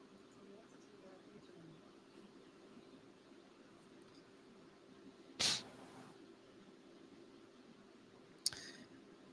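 Two sharp, brief mouse-button clicks, spaced a few seconds apart, stand out against a faint steady electrical hum as someone clicks the wrong buttons on a computer while trying to show AI art.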